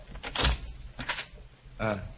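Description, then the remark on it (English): An unlocked door being opened, heard as three short scraping, creaking bursts, the last one drawn out with a squeaky, whining tone. Faint background noise fills the gaps. “Now, let's try the door. It's not locked.”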